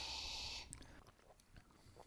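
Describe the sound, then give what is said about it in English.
A soft, airy slurp as someone sips a Hawaiian haze beer, followed by faint swallowing and small mouth clicks, quiet with no talking. “Boys, we're going to be sipping the Hawaiian haze first.”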